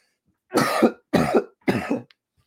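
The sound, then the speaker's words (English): Three harsh coughs in quick succession, each a loud rough burst of about half a second separated by brief pauses, with no talking. “I was hoping I would be able to hold off the coughs until I got done recording.”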